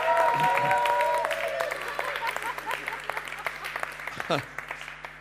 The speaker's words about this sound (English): Yeah, everybody give yourselves a clap. It's just so good.